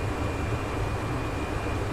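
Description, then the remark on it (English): A steady, continuous airplane engine drone from a flight simulator during a climb set to 1,600 feet per minute, a broad low rumble with a faint high whine running through it, unchanging and with no one talking. “I just wish I could get my engine to, like, quit being so high, because I don't think, even in a real plane, I wouldn't hear that.”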